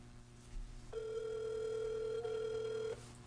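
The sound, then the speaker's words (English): One long ringback tone of an outgoing phone call, a steady buzzy purr lasting about two seconds, heard clearly over faint background hiss with no one speaking. “All right, so we're going to try and get some more people on the phone and shit.”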